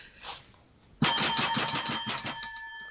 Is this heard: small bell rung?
yes